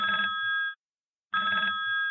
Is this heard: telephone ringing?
yes